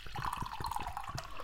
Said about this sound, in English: it's time to have one of these Arnold Palmers and see what it's like. Let's get this poured out of the flask.